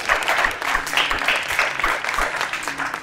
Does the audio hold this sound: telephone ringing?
no